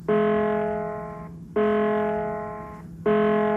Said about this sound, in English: They can be heard as they ring out loud. They're electronic bells, and there's a different bell depending on what it's calling. So the sound for the Dáil is this.